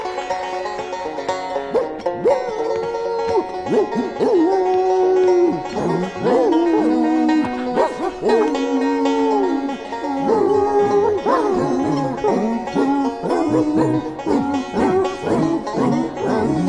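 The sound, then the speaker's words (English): Several dogs howl together at night in long, wavering, overlapping tones, broken by sharp barks and yips. The chorus is loud and keeps going the whole time, with no talking. “Swear them dogs are really singing.”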